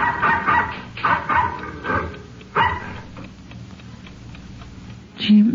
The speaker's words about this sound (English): At 11:30 on the night of May 22, 1947, the Stockholm Ranch, located in the middle of Carson County, Texas, was darkened for the night when the occupants were awakened by the barking of a dog.